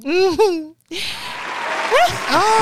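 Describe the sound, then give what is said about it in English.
An audience claps steadily in a dense, noisy patter as a bass player is introduced, with a loud whooping voice at the start and rising cheers and shouts breaking through the applause. “Oh, look at the people clap.”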